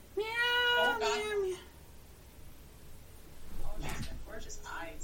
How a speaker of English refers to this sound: Oh, I hear her. She chirped. Say something on the microphone, kitty.